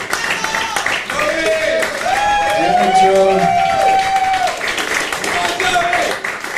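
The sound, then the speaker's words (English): A crowd applauds and cheers the Scream section steadily for several seconds, dense clapping running underneath a few loud whoops and shouts that swell in the middle before the noise eases slightly. “give it up for the Scream section.”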